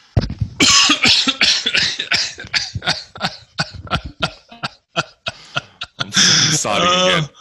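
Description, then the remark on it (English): A rapid series of short, harsh, loud coughs and throat-clearing bursts from a person with a tickle in the throat, followed by a longer rasping cough with a strained vocal edge at the end. “So people hearing your fucking cough straight off the bat.”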